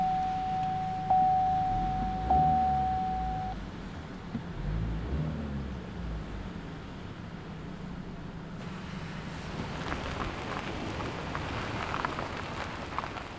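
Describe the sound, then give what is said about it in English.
Muffled, enclosed car-interior ambience: a low rumble under a soft wash of hiss, with a steady electronic tone for the first few seconds, then a brighter patter-like noise joining later on. “And then just like being in that, like, I think the silence of being in a car is so different from any other silence, because it's not, you go into a padded room, like a studio room, that's complete silence.”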